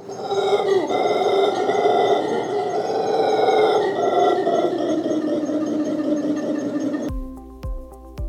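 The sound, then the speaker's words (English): A loud, sustained monkey call, a deep roaring drone that continues for about seven seconds before cutting off abruptly, followed by a short burst of a different tonal sound. “It is a monkey. Okay, guys, that's your hint. It's a type of monkey.”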